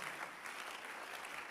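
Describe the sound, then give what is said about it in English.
A crowd applauds with dense, steady clapping that fills the whole moment, a continuous bright patter of many hands without breaks or voices over it. “You can clap your hands better.”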